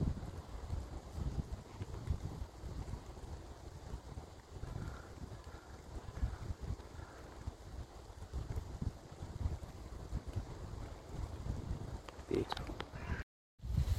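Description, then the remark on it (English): Wind blows steadily through woodland, a continuous low, rushing roar with gusty swells and a soft hiss above it, cutting out briefly just before the end. “Just enjoy that little white noise.”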